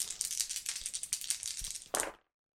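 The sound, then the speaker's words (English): Dice rattle and clatter in a rapid, continuous burst of bright, clicking taps, ending with a final louder knock before cutting to silence: one action die and two challenge dice rolled in a tabletop role-playing game. “6 on the action die, a 5 and a 10 on the challenge dice for a weak hit.”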